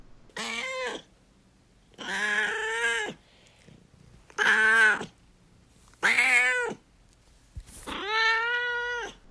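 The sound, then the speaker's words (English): A cat named Duarte meows five times in a row, each call drawn out and plaintive with short pauses between, fairly loud, with no one talking. “All right, and now it's time for Duarte's Corner, where my cat Duarte will give his opinions about this book.”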